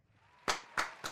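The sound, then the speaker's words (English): Three sharp, loud hand claps in a slightly uneven rhythm welcoming a guest, the head coach of the Nassau Community College Lions, onto a show: a brief burst of applause over a faint low background hum, with no voices. “Round of applause.”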